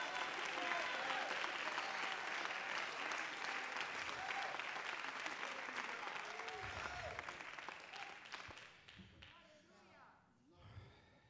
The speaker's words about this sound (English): Come on, clap your hands and praise.